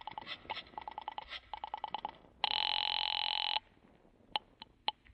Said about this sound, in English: You wait another half minute and then pick up the phone and call the guard at the gate.